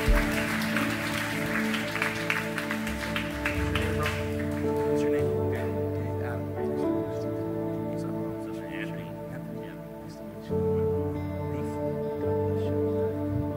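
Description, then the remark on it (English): On September 3, 2023, an audience claps in a dense burst for people who have come forward to be prayed with, over steady sustained musical tones. The applause fades out after about four seconds, leaving the music playing on its own. “Come on, can we give these honest people a big round of applause?”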